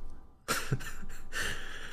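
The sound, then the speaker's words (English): A loud fit of coughing after choking on wine: several harsh, rough bursts in quick succession following a brief quiet moment, with no talking. “Wait, I thought that was going to be a small cough. I think I just choked on the wine.”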